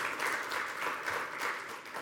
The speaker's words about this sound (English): Give God a hand clap on that one. Amen.